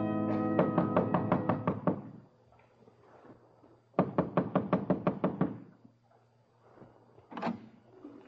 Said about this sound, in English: Only certain kinds of people knock like that.